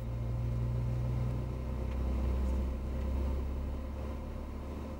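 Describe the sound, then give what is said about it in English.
A car engine hums with a steady, low droning rumble, holding a fairly even level for several seconds with slight swells in loudness. There is no talking. “On this computer screen, frequencies can be enhanced or reduced to change the sound of the car.”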